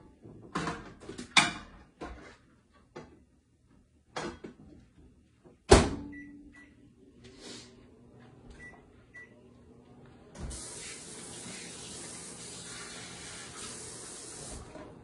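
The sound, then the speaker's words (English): A few clunks and a sharp microwave door slam, then several short electronic keypad beeps setting 1 minute and 30 seconds, followed by the steady whirring hum of the microwave oven running as it heats food for dinner, moderately loud. “Definitely would be great in an air fryer, but I'm going to put in the microwave for 1 minute and 30 seconds.”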